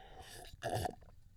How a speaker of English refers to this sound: Ah, yeah, a nice little slurp there, it's gonna make me feel all right.